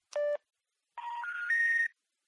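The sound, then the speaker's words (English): Phone dialing tones as someone calls Lorelai: one short electronic tone, a brief pause, then three steady tones in quick succession stepping upward in pitch. Clear, with no voices. “I'm calling Lorelai.”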